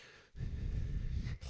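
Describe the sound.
A voice imitates heavy breathing with one long, loud, rough exhale lasting about a second, followed by the start of another breath.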